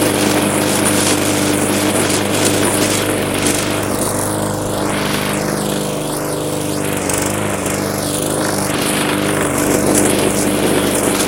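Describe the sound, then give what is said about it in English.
A gas lawn mower engine with a full tank of gas drones steadily and loudly while mowing a yard, its buzzing tone holding constant with slight shifts in pitch as it moves, and no one speaking. “Mowing away with a full tank of gas, everybody up across the hut.”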